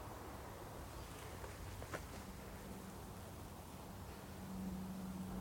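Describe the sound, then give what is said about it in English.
A faint, steady hum of distant traffic on the main roads in the valley, heard from a wooded hillside track under heavy grey cloud, fills the background as a continuous low wash, with a thin droning tone running through it and no one speaking. “Bit of a hum from the main roads in the valley, but there's a beautiful piece here.”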